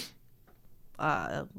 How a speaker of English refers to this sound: I might sneeze.